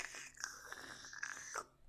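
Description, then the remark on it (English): A breathy intake of air lasting over a second, like slurping a sip of coffee or drawing on a vape, with faint crackly texture and no talking. “Can't tell if you're sipping coffee or hitting your baits.”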